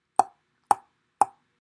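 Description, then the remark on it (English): Three sharp, hollow clicks in a steady, evenly spaced rhythm, each with a brief mid-pitched ring, heard after a button with a red light is pushed, sounding alone with no voices. “It sounds like clicking now.”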